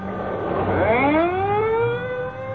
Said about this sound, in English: The ambulance is pulling away. And there go the police cars.